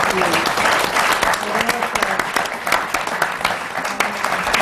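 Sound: audience applause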